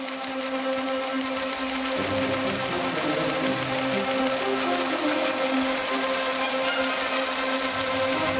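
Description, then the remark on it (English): A teletype machine printing: a steady, continuous mechanical whirring clatter with a low humming tone running underneath, holding an even loudness throughout with no voices. “I think I hear the teletype going off.”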